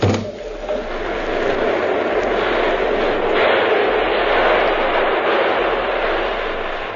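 A train passes with a loud, steady rushing roar and a deep low rumble underneath, holding an even level for several seconds without a break.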